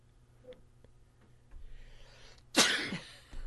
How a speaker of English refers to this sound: I'm muting my mic. Something's got me sneezing in here.